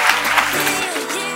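An audience claps in a dense, steady burst of applause, loud and even throughout with no voices standing out.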